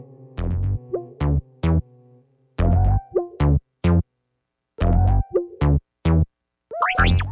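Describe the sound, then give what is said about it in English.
A camera shutter sound effect from an app, set off by pressing the wrong button, fires again and again in quick bursts, loud, with a few short electronic chirps mixed in and no one talking. “And that's a camera.”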